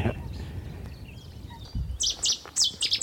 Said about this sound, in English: Don't often see Seti's warblers because they tend to skulk in bushes, but they were obviously having a little battle over territory. It's an almighty call for the size of the bird.